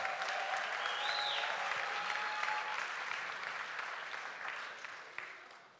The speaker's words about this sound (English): We should clap for them, and you should tell them how thankful you are for them, because they didn't despise the small thing, and now they're looking at me like, I slept on a bunk bed and ate camp food.